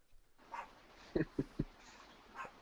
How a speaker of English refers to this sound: It's hard to do a podcast when you keep barking, little one. Shh. Well, sorry, folks. You're just going to have to deal with it. He won't shut up. He's got a mind of his own. He's going to bark at his own chatter.